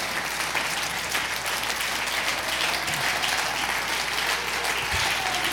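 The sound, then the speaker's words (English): An audience claps their hands in praise, many hands blending into a dense, continuous wash of applause that stays loud and even throughout, with no voices standing out. “Oh, clap your hands and praise him again.”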